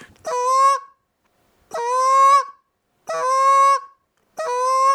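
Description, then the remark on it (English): Four drawn-out goose moan calls blown on a call, each a loud, nasal, slightly rising honk of under a second, spaced evenly with short silences between and no talking. “But, you know, a lot of times I'll actually do more moans than I will clucks or anything like that. So a moan is this here.”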